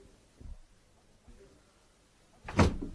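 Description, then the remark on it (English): A door is handled: a soft knock of the latch and a quieter shuffle, then a firm, solid thud as it swings shut. “Shut the door”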